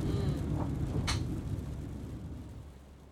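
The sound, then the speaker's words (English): An animal's tail knocks against a metal tank, giving a soft thump and then a sharper metallic bang over a steady low rumble. No one speaks. “That metallic sound is her tail.”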